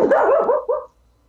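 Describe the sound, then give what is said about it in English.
A dog barks, a drawn-out, wavering bark followed by a shorter second yap, then quiet. No one speaks. “The dog thought it was funny.”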